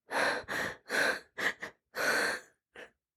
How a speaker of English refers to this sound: They were panting and scared.